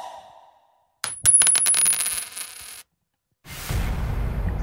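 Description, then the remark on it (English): A coin drops onto a hard surface, clattering through a quick series of sharp metallic bounces that ring out and settle within about two seconds. It is fairly loud, with no talking. “Coin. 3, 2, 1. Drop it.”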